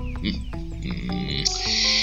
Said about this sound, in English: Yes, that's what I listen to while I bike. Birds, soliciting other birds, bragging, and also telling me to fuck off.